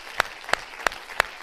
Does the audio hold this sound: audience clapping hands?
yes